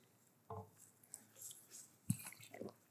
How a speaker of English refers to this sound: I've heard it's a tricky business drinking water on stage, so.